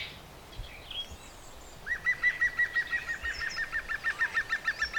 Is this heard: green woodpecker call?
yes